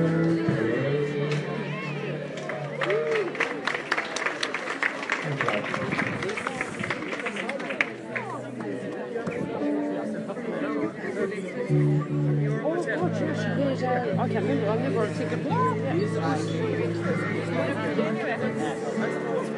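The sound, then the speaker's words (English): A large crowd chatters steadily outside a pub in Kilkee, County Clare, during a festival, many overlapping voices forming a dense, continuous babble, with sustained tones of live music mixed in underneath throughout. “What a big crowd of people outside this pub.”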